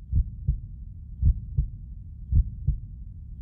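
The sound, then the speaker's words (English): A heartbeat heard through an Echo digital stethoscope: three steady lub-dub pairs of deep, muffled thumps about a second apart, slow and regular, with a faint low hum between beats and no talking. “When you hear with Echo's digital stethoscope technology for the first time.”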